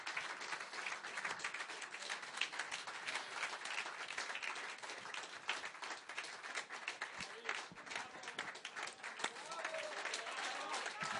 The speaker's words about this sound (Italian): Questi sono gli applausi per lo spettacolo di … che abbiamo ascoltato in diretta.